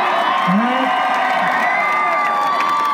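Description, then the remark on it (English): An audience at the Appalachian Healing Festival cheers and whoops loudly with clapping mixed in, a dense, steady roar of voices and rising shouts that holds for about three seconds. “So let's give this guy a round of applause.”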